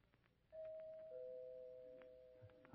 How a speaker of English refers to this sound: I know who it is because... She rings the doorbell instead of knocking.